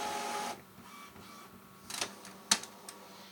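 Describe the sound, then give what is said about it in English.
A printer whirs through its automatic self-alignment, a steady motor drone followed by a few sharp clicks and clunks of the print head, with no one talking. “Sorry, my printer just decided to align itself.”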